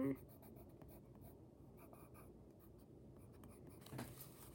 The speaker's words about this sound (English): So now we're gonna have this brown pencil. Just color her hair a nice chestnut brown, whatever you wanna call it.